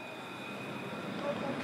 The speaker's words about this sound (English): So this is stop number 20, there on the tram and over there. So this is where it's pretty notorious. It's the corner of Lennox and Victoria Street.